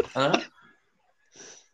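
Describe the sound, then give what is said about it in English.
A man imitates heavy, rasping breathing into the microphone: a loud voiced exhale, a pause, then a softer hissing breath, like someone panting. “I could hear him breathing, just going... How do you know Jay's there? Because it sounds like Darth Vader's in your ear.”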